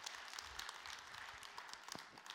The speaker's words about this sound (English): So give him a round of applause. Thank him again.